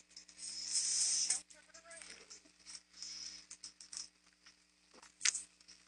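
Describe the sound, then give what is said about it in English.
Rain patters steadily with a hissy, crackling texture while a dog is taken out on a leash, swelling into a louder wash early on, then continuing in uneven bursts with a sharp tap near the end and faint voices underneath. “Rain ain't gonna kill her.”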